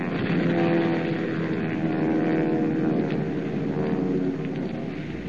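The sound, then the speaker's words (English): A steady, heavy engine drone fills the air without a break, like propeller aircraft passing overhead, loud and sustained with a low rumbling hum and no voices. Nazi bomber planes dropping bombs, including a 1,000-pound bomb, on a base hospital. “As though in answer to Superman's taunt, a huge 1,000-pound bomb detaches itself from the undercarriage of one of the planes and comes screaming down on the gabled roof of the tiny base hospital.”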